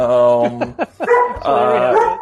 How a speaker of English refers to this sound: And hold on, my dog is barking. Oh, I'm sorry.